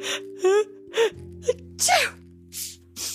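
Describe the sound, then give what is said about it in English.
A person acts out a cold with a run of sniffles and breathy, sneeze-like bursts, several short vocal outbursts in quick succession over a steady low hum. “One day, Amos awoke with the sniffles and the sneeze.”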